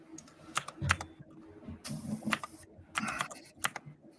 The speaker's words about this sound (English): Smash the keys. It's just him typing for an hour.